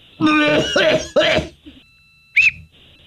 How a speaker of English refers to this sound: I just did the Heimlich on myself and... this is really weird. I coughed up the whistle.